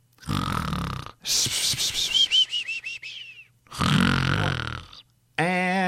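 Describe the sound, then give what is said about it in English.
A voice imitates loud, rasping snores, each inhale followed by a fluttering, descending whistle on the exhale, repeated twice, then a brief high tonal whine at the end. “Juno is starting to recognize the snoring and thinks that's the end of the episode.”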